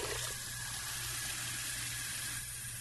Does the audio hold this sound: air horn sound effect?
no